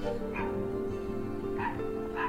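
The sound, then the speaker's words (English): An American Bulldog in a video gives three short, deep barks spaced across a couple of seconds, heard over a steady droning hum in the background. “American Bulldogs are gorgeous dogs. Look at this dog.”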